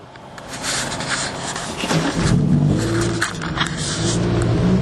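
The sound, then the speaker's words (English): A Lamborghini Huracan EVO sports car engine rumbles and revs while driving around town in automatic mode with its 7-speed dual-clutch transmission, a low steady tonal drone rising in pitch, plus road and tire noise, fairly loud, no talking. “We're gonna jump to you driving the car right now.”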